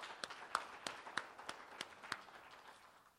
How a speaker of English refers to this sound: So just give yourselves a round of applause.